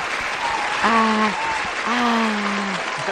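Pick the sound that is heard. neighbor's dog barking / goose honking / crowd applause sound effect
crowd applause sound effect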